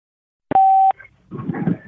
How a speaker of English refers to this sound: Thank you for calling Beautiful Anonymous. A beeping noise will indicate when you are on the show with the host.